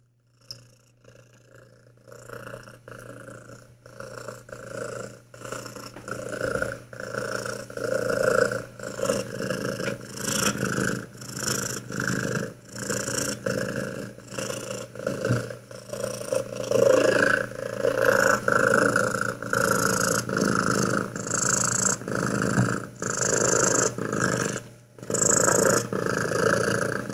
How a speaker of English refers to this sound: Now for all you ASMR freaks out there, here's a cat purring.